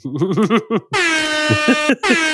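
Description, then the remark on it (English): A brief shouted voice gives way to a loud, blaring air horn sound effect from a soundboard that holds for about a second, cuts out briefly, then blasts again, with faint voices underneath. “Fuck, that was the perfect time to do the air horn.”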